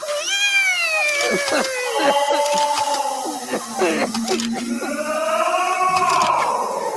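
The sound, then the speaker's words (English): Several kittens meow nonstop, their high, wavering cries overlapping one another loudly for the whole stretch, with no one speaking. “These kittens needed help. Meow, meow, meow! Meow!”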